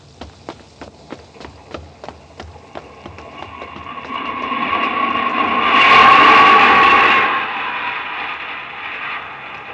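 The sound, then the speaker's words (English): Quick, evenly spaced footsteps hurry down into an underground tube station as it starts to rain, then a tube train roars in, its rumble swelling to a loud peak with a steady metallic whine before easing slightly. No voices. “Here's the tube. Let's duck down into the station.”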